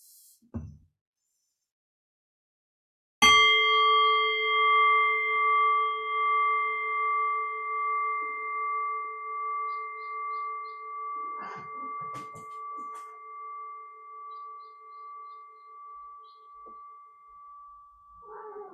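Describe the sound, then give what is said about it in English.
A single meditation bell is struck after a brief pause, its clear, pure tone ringing out and slowly wavering as it fades gradually toward silence over many seconds. “Allow the fading bell to guide your awareness into silence.”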